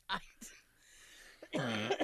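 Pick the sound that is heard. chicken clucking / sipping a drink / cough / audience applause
cough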